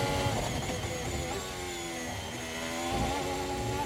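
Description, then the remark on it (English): A Formula 1 car engine screams at full throttle through turn two, the driver keeping the throttle on; a loud, steady high-pitched whine with pitch shifting slightly as it holds power, with no one talking. “Turn two is the key here. He's got to keep the throttle on.”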